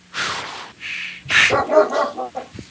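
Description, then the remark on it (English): A voice imitates a dog, with a few breathy huffs followed by a string of short, rough, yapping barks and whines, fairly loud, with no other sounds around it. “That's his second brain. It sounds like a dog.”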